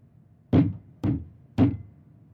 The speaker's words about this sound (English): This time, the knocking was loud enough to rattle the door.